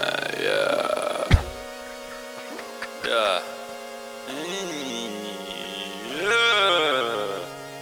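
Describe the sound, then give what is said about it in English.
Buzzy, sputtering fart noises pitched into a silly little tune in a homemade novelty song made in someone's apartment, sliding up and down in a melody, with a sharp pop early on and no talking. “Eggy, this eggy song farts, doesn't even register how many eggy, times it's been played.”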